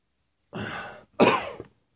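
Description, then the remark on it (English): Two harsh coughs in quick succession, the second sharper and louder, with a brief pause between them and no talking. “I do respect your space not to be coughed in your face, so I apologize for that.”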